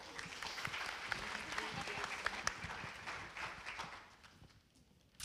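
An audience breaks into steady, dense applause, many hands clapping together in a sustained wash that holds for about four seconds before thinning out and fading.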